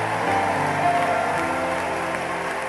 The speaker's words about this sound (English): In the name of Jesus, give the Lord a mighty hand clap of praise like you believe it. Clap like you believe it.